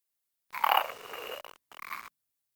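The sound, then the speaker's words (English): In a recording made by Ed Warren, a person mimics a pig's grunting when asked to: a drawn-out, rasping snort followed after a brief pause by a shorter one, fairly loud, with no other sounds around it. “Imitate some animals. Imitate a pig.”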